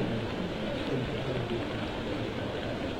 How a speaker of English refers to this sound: So, some lull comes over the ground. Rain still coming down. Really wet day.